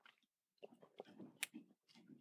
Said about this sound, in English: So let me take a sip of water here real quick.